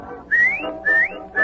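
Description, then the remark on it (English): A person whistles three loud rising notes in quick succession, each sliding upward in pitch, whistling to call a dog named Rover, with no talking. “Oh, I'll bet he hears me whistling.”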